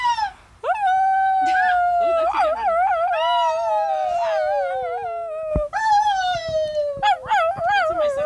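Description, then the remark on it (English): A voice imitates a coyote: long, loud, sliding howls that wobble and break into yipping warbles, with a second drawn-out howl partway through, without other sounds. “Can you mimic the sound a coyote makes?”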